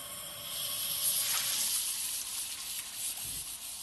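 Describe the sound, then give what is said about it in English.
A steady, hissing stream of running water pours continuously toward a tile in a kitchen, filmed as a test of a compressed-air roof, bright, with no voices over it. “A stream of compressed air would keep the water from falling onto the tile.”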